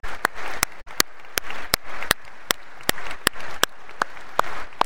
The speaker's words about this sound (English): Okay. Now, can you just applaud them and thank them?